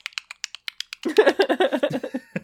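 A handheld clicker snaps rapidly and repeatedly, a string of sharp clicks, and then a voice starts up and the clicking continues faintly beneath it.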